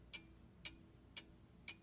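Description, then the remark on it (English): A clock ticks steadily, four crisp clicks evenly spaced about half a second apart, fairly quiet over a low background hum, with no voices. “Ticking and ticking and ticking.”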